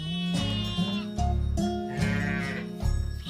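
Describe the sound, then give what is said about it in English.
Sheep bleat repeatedly and loudly, several wavering calls overlapping one another in a continuous chorus with only brief gaps, no talking. “It feeds me meat, milk, cheese, and the sheep enriches the soil.”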